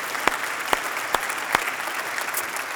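A church audience at a Baptism Sunday service claps for 57 people about to be baptized, a steady wash of applause with a few sharper, louder claps standing out at an even rhythm over the dense patter.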